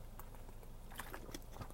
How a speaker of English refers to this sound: actually, let me take a little sip of water.